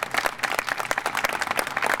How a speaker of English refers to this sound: And just one round of applause again for our mayor.